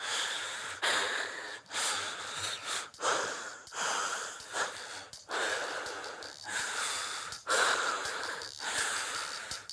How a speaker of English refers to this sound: The track begins with a harmonically rich a cappella arrangement that segues into a mysterious heavy breathing, beneath which a percussive loop unfolds with Dreamy Rhodes piano, synthesizer, and saxophone ad-libs.